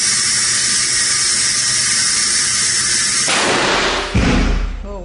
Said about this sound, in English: where a mouse, and in this demonstration, a model, is exposed to an explosion equivalent to the IEDs used in Iraq and Afghanistan. When it reaches about 25, this thing is going to go.